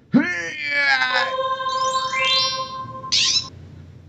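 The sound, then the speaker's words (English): A person's voice mimics a Californian scrub jay's call, a loud, strained, wavering squawk that swoops and holds, ending with a short, harsh rasping burst, alone. “This is the great and mystical Californian scrub jay, mightiest of psychology animals, capable of amazing feats of theory of mind and topographic mapping, and also laser vision.”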